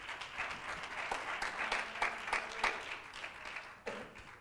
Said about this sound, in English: Why don't you give the Lord a hand clap of praise right now one more time.